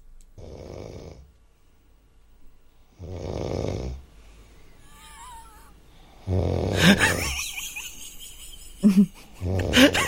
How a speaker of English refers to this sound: But somebody has just WhatsApped us in their partner snoring. Can we have a listen? Hang on.